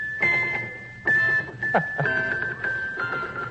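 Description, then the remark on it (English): Small bells jingle in several shaken bursts, each a bright metallic clatter over a steady high ringing tone that lingers between shakes. “Look at Squeaky pick those little bells up and shake them.”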